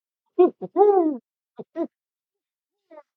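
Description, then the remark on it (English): A man's voice imitates an owl, giving a short series of breathy hoots with one longer, drawn-out call in the middle, followed by a faint final hoot after a pause. “He'll make you the owl noise.”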